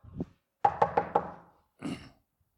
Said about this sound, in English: So a guy's at home minding his own business, watching television, and all of a sudden there's a knock at the door.